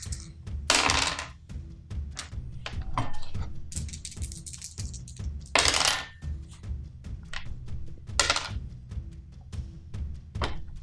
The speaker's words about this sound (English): How's it feel to hear all those dice keep rolling